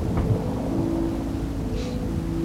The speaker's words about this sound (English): It is nighttime and raining. It is storming, actually. You see lightning and hear the thunder as you get off at the train station in Boston.